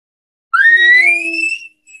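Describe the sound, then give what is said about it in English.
A single bull elk bugle: a high, whistling note that rises and holds for about a second, with a faint low tone beneath it, then fades. No talking. “It means the bull's emotion changed from a location bugle, the very first one, and maybe you got a response back”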